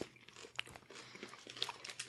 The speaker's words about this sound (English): This is potato chips big cup. Oh, Jesus. Yeah, it's a thick boy, huh? Whoa, it's actually crunchy.